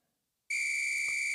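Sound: whistle blowing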